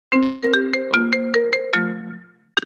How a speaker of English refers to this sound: Wait, sorry. My brother called me too, so my phone is like...